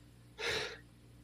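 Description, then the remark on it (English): A single sharp sneeze, a sudden breathy burst lasting under half a second, fairly loud and heard alone with no talking around it. “excuse me. Bless you.”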